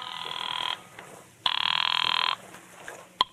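A telephone rings twice as a call is placed to a hired detective, each long electronic trill steady and fairly loud with a short pause between, followed by a faint quiet stretch and a brief sharp click near the end.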